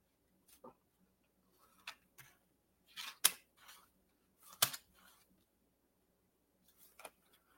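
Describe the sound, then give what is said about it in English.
Quiet handling of a deck of cards being shuffled and drawn: scattered soft snaps and brief riffling bursts at irregular intervals, with near silence between them and no voices. “Ah, I almost pulled another one. I got to shuffle these better.”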